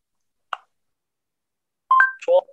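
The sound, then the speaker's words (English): A brief soft click, then after a short pause a quick two-part electronic chime, a voice assistant's listening beep before a text message is dictated, clear with no talking. “I listen after a beep”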